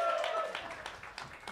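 An audience claps in a steady, scattered patter of many hands, with a brief tonal hum at the start and faint voices mixed in under the applause.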